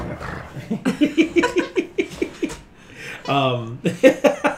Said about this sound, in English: All right. You hear a growling?